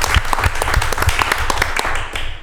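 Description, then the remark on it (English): Steady audience applause at 804 RVA, many hands clapping in a dense, continuous patter with sharp individual claps standing out, fairly loud throughout with no clear talk over it. “Ladies and gentlemen, we are at 804 RVA, clap it up, it's a Cheats Movement Podcast.”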